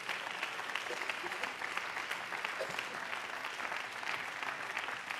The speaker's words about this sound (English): If you are going to receive the word tonight, would you lift up a hand clap of praise unto the Lord all across this place?